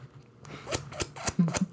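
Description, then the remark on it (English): A quick run of six or seven crisp, papery flicks and scrapes, getting louder toward the end, as a voice imitates riffling through a stack of cash. “That's me unraveling my cash stack.”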